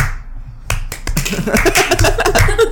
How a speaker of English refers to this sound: Exactly what I deserve. You only get claps of what you deserve.